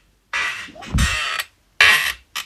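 A chair creaks and groans in several harsh, scratchy bursts as someone shifts their weight, with a dull thump partway through and short pauses between the squeaks.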